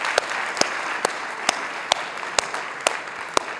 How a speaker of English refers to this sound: You are a great mom, and we absolutely love you, okay? I just have to say, we're gonna clap for you again, because we love moms. Come on.